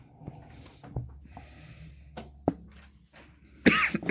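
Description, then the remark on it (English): Someone coughs a few times in short, sharp bursts with brief pauses between them, ending in a louder, harsher fit of coughing. No one speaks. “Do you need to cough so bad?”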